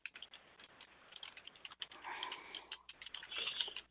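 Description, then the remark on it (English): Rapid, irregular clicking of typing on a computer keyboard, with quick keystrokes and a few mouse clicks while playing Minecraft, fairly soft, and no talking. “Okay, if you can hear me type, I apologize.”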